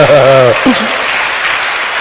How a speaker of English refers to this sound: Even if you come to church and you don't know why people are clapping, but you clap, some blessing will come to you.